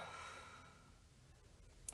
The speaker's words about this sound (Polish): I weźmiemy wspólny, głęboki wdech przez nos. I wydech przez usta.